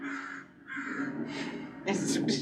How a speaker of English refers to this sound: Did you find crow ambiance? Of course I did.